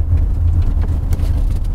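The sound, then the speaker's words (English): A car engine hums steadily at low revs, a continuous rumble as the car rolls slowly off the motorway into a car park area, with no voices over it. “So I've come off the motorway into the car park area.”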